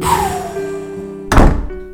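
A steady mechanical hum, like a subway train idling, runs throughout until a single loud thunk of subway doors sliding shut lands near the end, with no one speaking.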